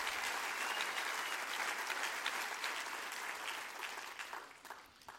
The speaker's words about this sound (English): Amen. Clap your hands. You're in a good church tonight.